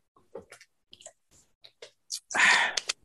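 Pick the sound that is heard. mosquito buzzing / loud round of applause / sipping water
sipping water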